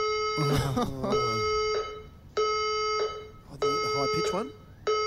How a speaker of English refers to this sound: The fire alarm system has operated. Stand by for further instructions.